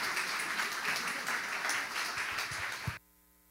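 A church audience applauds a pastor as he comes back, a dense wash of many hands clapping at an even loudness for about three seconds before cutting off abruptly into near silence.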